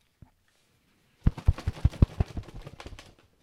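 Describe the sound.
An imitated turkey fly-down cackle, made by a person standing at a tree with a shotgun to imitate a turkey flying down: a rapid, loud burst of sharp, irregular clucks lasting about two seconds, trailing off into softer notes, preceded by a single faint click.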